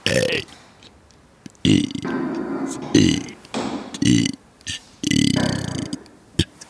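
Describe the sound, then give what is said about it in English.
Someone belches the alphabet, a string of distinct, voiced syllables one after another, each burp loud with short pauses between, sounding out letters in a rhythmic sequence. “Are you belching the alphabet?”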